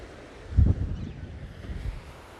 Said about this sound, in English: And I know how sexy you find the ocean.